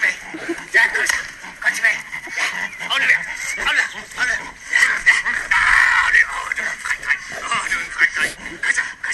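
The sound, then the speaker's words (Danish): A dog whimpers and barks in a steady, restless stream of high whines and short yelps, fairly loud, with a few longer squealing cries partway through. “Han er virkelig god til at være hund.”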